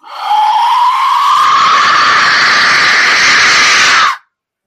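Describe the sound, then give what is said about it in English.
A loud, sustained blast from an Aztec death whistle lasting about four seconds, with a harsh, rising shriek and noisy overtones that make it sound like people screaming, cutting off abruptly. “When you blow this thing, it sounds like people just being mauled.”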